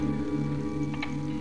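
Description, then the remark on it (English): A grandfather clock ticks near a curtained archway, with a quick pair of soft ticks standing out over a steady low electrical hum; no one speaks. “Our lives were geared to the relentless machinery of the grandfather's clock that ticked away near the curtained archway.”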